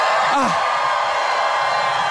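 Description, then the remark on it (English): An audience on a cruise cheers loudly and steadily throughout, a dense roar of voices with one high, sweeping whoop rising above it near the start; it is windy. “If you've had the most amazing time, make some gorgeous noise.”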